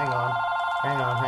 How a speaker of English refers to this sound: All right. Well, the phone's ringing here.